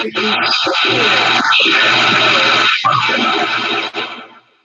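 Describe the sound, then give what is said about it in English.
A toilet flushes with a loud, steady rush of water lasting several seconds, muffled voices mixed in, before the sound tapers off and stops. “Somebody flushed a toilet.”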